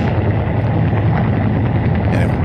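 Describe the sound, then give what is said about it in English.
A fairly big helicopter that looks like a Huey or that type, coming in, its loud, steady rumble heavy in the low end with a faint rhythmic pulsing from the rotor running through the continuous roar. No voices are heard. “Helicopter. Looks like a Huey.”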